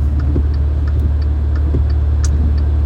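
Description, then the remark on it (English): The 6.6-liter Duramax diesel engine of a blacked-out GMC Z71 2500 pickup truck with a 10-speed transmission idles with a steady, deep rumble, a faint regular ticking riding over the drone throughout. “Then I got myself a big old murdered out Z71 2500 diesel, the Duramax. I think it's a 6.6 liter Duramax, 10 speed.”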